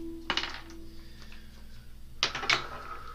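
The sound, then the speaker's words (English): Dice clatter and rattle across a hard tabletop in two short bursts, a quick tumbling roll, a pause, then another sharp roll, with no voices, as players roll dice for a stealth check in a game. “Okay, roll stealth.”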